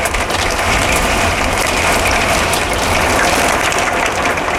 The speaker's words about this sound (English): Oh, can you hear it loud in there? It's pretty bad, guys. It is hailing like a motherfucker here.